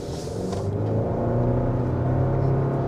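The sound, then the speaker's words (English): A brand-new pickup truck with 54 miles on the odometer accelerates steadily on a road at less than full throttle, its deep rumble rising in pitch with smooth harmonic tones, heard from inside the cab with no talking. “I can accelerate a little bit on this road.”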